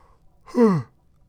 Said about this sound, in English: I'm not going to hide that yawn. I am beat. It's 2 in the afternoon and it feels like I'm about to pass out.